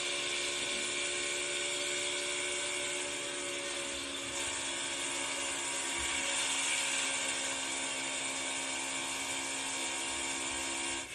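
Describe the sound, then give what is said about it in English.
A continuous, loud, high-pitched whine of race car engines on a restart, held at steady throttle and barely out of the gas for about eleven seconds, with layered tonal harmonics and no talking. “Listen to the throttle on time right here.”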